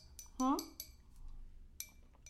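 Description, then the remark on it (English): Glasses clink together in a toast, a few bright, short taps, with a brief voice and light background chatter around them. “I don't know why these glasses look plastic to me.”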